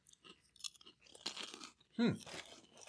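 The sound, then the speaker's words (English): Crisp, crackly crunching on shrimp tempura in several bursts of chewing, the loudest near the end, where a brief low hum of a voice blends in. “Like, this is what, shrimp tempura?”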